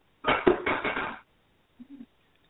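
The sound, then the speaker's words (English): About a second of busy clattering as dishes and pans knock together while being washed, sounding muffled and narrow like it's coming through a phone line, then a short, faint clunk after a pause. “Doing the dishes, or are you coming on the show?”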